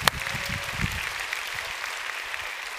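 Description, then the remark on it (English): An audience claps together in a steady, dense burst of applause, many hands producing a continuous crackling patter at a moderate, even level throughout. “Matter of fact, let's all clap because we want to be a generous giver today.”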